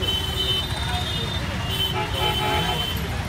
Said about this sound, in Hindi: यार ये लखनऊ की ट्रैफिक भी ना।